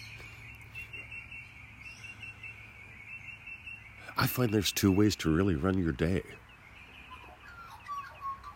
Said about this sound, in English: On the other hand, I was told that ornithologists, I believe they call that, that's what they call a bird expert, that they say birds sing to establish their territory, to defend what's mine.